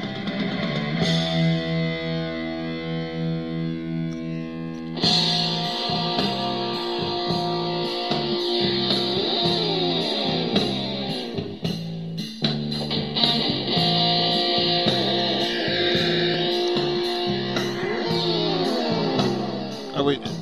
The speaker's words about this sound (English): Guitar solo. Wait, I love how it goes into the …-esque guitar solo